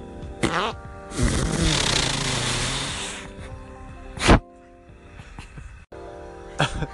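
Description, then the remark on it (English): A raspy, buzzing fart sound stretches for about two seconds, then a single sharp, brief flap-like burst follows after a short pause, with faint tonal hum in between. “Okay, so that fart had, like, at first, like, a, like, it started, and then it had, like, a flap.”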